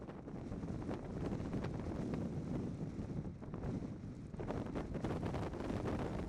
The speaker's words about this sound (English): Well, it's windy and it's dry. These are the gypsum sands of old shorelines. The lake bed itself is empty.